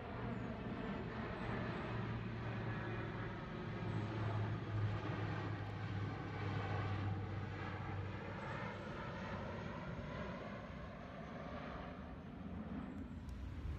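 A large cargo airplane roars overhead, a loud, sustained low engine drone with a steady tonal hum that swells and lingers for the whole stretch, no one speaking.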